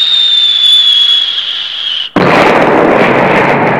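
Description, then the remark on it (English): A high, steady whistle slowly drops in pitch for about two seconds, then cuts off into a sudden, loud roar of explosions as a copper core fragment missile crashes into a tower turret and 15 more missiles follow, rumbling on without pause. “15 other missiles followed immediately after.”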